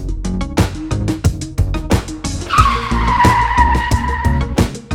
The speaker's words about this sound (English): Okay. I like that car screech. That was awesome. Hope y'all weren't listening in the car and I made that car screech sound. I know y'all was like, oh snap.